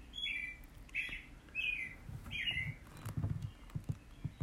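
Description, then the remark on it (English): A single small bird nested on a mini-trailer cheeps in short, evenly spaced bursts, about four high chirps, over faint outdoor background noise and some low rustling. “Communing with a lone cheeping bird nested on a Dickie Moore mini-trailer, he smokes.”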